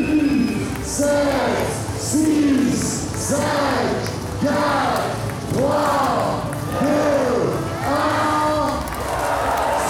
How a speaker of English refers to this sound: Well, the start line here at stage four, longest stage of the race, Cahors to Rodez, amazing crowd here at the start, and the countdown is about to begin. I do love a bit of countdown, so I'm just going to let the announcer do his job.